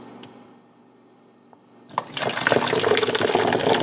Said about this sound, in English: Now, if you listen closely, you'll hear this foam when I pour a little bit of it into this bottle.